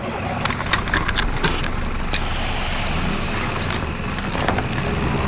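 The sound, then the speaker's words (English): A motorboat engine drones steadily as the boat is driven back to the shore, a dense low rumble with some hissing wash and sputtering bursts layered on top, running continuously with no voices. “That will give Kai some time to drive the boat back to the shore.”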